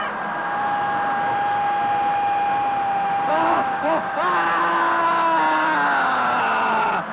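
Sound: screaming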